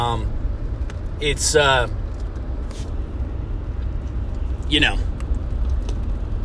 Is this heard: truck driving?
yes